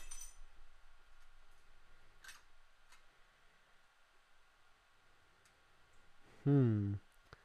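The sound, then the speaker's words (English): A drinking glass holding wine gives a single sharp crack as it shatters in a person's hand, brief, then a few seconds of near-quiet before a person lets out a loud, startled cry. “My glass just exploded in my hand.”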